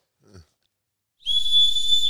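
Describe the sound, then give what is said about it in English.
A safety whistle is blown once in a single steady, shrill blast lasting about a second, loud, after a brief low murmur and a moment of silence. “I'm going to blow this because I feel like I remember testing it and it was quiet.”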